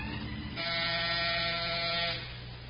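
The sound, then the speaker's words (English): The door buzzer of Dixie Martell's apartment is pressed: a harsh, steady electric buzz sounds once for about a second and a half, a loud rasping drone of stacked tones, then cuts off, leaving a low background hum. “Then why do you keep buzzing?”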